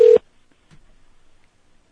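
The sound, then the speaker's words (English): A single short, loud telephone tone sounds at the very start, like a dialing or ring signal, then gives way to near silence with only faint background noise. “Since it starts ringing, I'm going to turn your audio off.”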